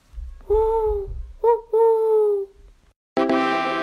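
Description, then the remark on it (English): An 8-year-old child's voice imitates an owl's hoot, with a long wavering hoo, a quick short one, then another drawn-out hoo, clear, before a brighter, louder vocal sound cuts in. “I'm going to do my best owl impression.”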